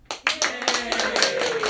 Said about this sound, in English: So I really want to give a round of applause. I hate to say this, but to the Sacramento Bee.